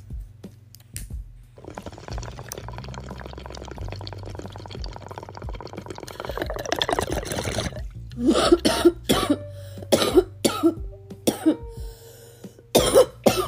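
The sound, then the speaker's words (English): Bubbling water gurgles steadily for several seconds as someone takes a hit from a bong with an ice cube in it, then a series of loud, harsh coughs and throat clearing erupt in uneven bursts. “But again, I'm still kind of getting over this little cough, so it's gonna hit me hard regardless.”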